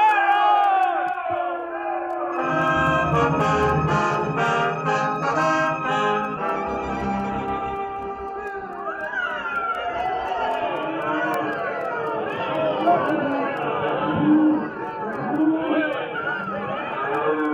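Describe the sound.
A large crowd of townspeople in Abilene cheers and yells continuously as cattle drivers ride into town, many overlapping voices shouting and whooping together, loud, with rising bursts of excited hollering throughout.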